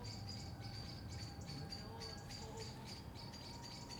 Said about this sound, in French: Il y a une grande variété d'oiseaux ici, ça c'est formidable.